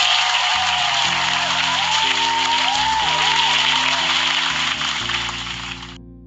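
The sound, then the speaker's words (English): A dense, steady round of applause with a low musical tone sustained beneath it, holding for about five seconds before tapering off and fading out. “So round of applause for you guys.”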